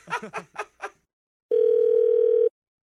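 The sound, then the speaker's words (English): A few short voiced bursts, then a pause, followed by a steady, loud telephone dial tone after the other caller hangs up, humming at one unbroken pitch for about a second before cutting off. “He hung up.”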